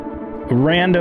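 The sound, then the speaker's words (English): A buzzy, harmonically rich synthesizer tone holds one pitch, then jumps to a louder new note that slides upward and settles: a short run of randomly generated sequencer notes passed through a quantizer that keeps them on certain notes of the C scale, feeding an oscillator. “Set of tones in a sequencer that then goes through a quantizer that keeps it at the C scale.”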